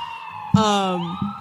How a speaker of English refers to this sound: So you hear a lot of sirens, and you are just five weirdos walking down the street in the middle of the night.